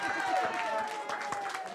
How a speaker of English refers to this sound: Clap, but look. You see? Clap for the Lord Jesus.